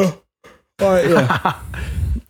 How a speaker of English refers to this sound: What? You're yawning. Oh, shush. Ooh. I'm not tired. I just haven't yawned in about an hour.